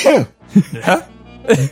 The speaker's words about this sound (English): Sorry, I had to sneeze.